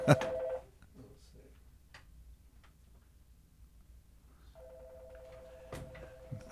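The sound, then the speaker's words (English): A telephone rings in two bursts, a brief loud trill at the start and a steadier electronic ring later, with quiet room noise and faint voices between. “Should I turn that off? Sure. Don't worry about it. Does it keep ringing or?”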